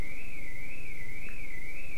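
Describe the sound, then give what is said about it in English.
A car alarm wails with one high-pitched tone that rises and falls steadily, about twice a second, loud and unbroken over faint background noise, with no voices. “There's a car alarm going off.”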